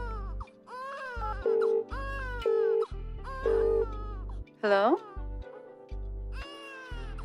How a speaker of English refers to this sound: Do you hear your son crying? Come home now!